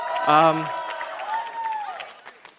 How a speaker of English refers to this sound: Yes, that's the young adults here. I love you guys so much. Thanks for cheering on the camp.